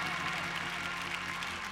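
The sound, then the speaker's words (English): Sustained audience applause for a performance: a dense, steady wash of many hands clapping at an even level throughout, with no voices standing out. “Let's give that amazing performance one more round of applause.”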